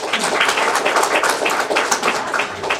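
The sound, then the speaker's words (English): The ladies in an audience clap their hands together when asked, answering a show-of-hands poll: a steady, dense burst of applause lasting a few seconds, many hands overlapping at an even loudness with no voices. “All the ladies in the room, would you please clap your hands?”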